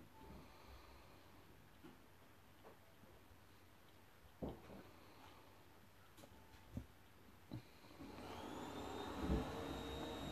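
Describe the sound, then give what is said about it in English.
A Hoover vacuum cleaner drones faintly in the background, broken by a few soft knocks, then swells louder with a rising motor whine over the final seconds. “And there's a Hoover in the background, so if you guys hear that, apologies.”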